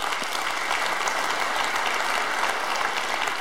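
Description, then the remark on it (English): An audience claps steadily, a dense, even wash of many hands that stays loud and constant throughout with no pauses or talking. “I mean, I tell you, you don't have to clap for all of them.”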